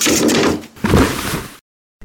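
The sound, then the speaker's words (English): A trap door gives way underfoot in two loud bursts of crunching, clattering noise, the second following a brief pause, then everything cuts to sudden silence. “What the heck was that? A trap door?”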